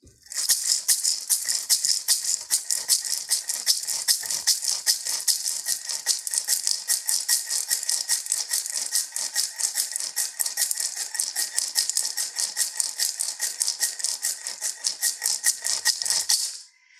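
A handheld dolphin rattle shaken steadily and rapidly for about sixteen seconds, producing a bright, continuous dry clatter that stays fairly loud throughout, with no voices.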